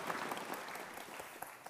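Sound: audience applause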